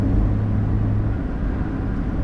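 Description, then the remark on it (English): The 1.6-litre engine of a Mazda MX-5 with 36,000 miles on it hums steadily while driving, a continuous low rumble with a faint steady tone, moderately loud with no one speaking. “The engine, the little 1.6, is absolutely sweet as a nut.”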